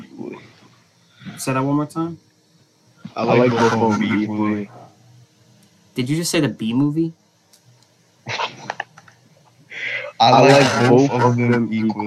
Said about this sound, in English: It's really hard to hear what you're saying because for some reason, like, you're echoing. I don't know why. It might be my end. I have earbuds in. That's probably why.